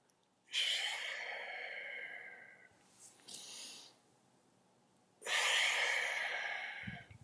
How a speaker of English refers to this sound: It feels great. And you feel the rush of blood flow and the oxygenation. Not only that, but think about it. While you're doing this deep breathing, you're actually super oxygenating your body.